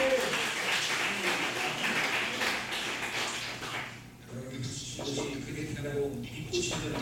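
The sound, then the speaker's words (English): An audience claps together in a dense, steady burst of applause for about four seconds, which then dies away as a man begins speaking. “I will believe that the reason why you clapped is because you believe that you will become like that.”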